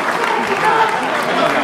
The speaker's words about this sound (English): Let's give Brother a round of applause. Give it up.